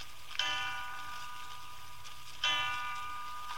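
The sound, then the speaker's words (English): A clock strikes three o'clock, with two clear, resonant bell tones about two seconds apart, each ringing on and fading slowly. “3 o'clock.”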